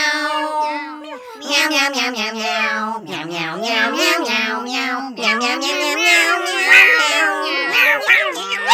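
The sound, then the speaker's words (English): A human voice imitates a cat, meowing over and over in a quick string of loud, sing-song mews with rising and falling pitch. “Meow, meow, meow, meow. Meow, meow, meow, meow, meow, meow.”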